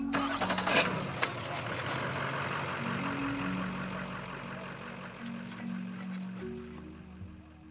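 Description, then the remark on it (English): A truck engine cranks and catches as the trucks are loaded up to leave, then rumbles on with a rough, steady idle and a few shifts in revs, fairly loud with no voices. “it's time to quench the fire, load up the trucks, and leave.”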